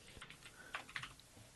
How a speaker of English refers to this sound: Your keyboard actually makes the clicking noise. Like you know, does it?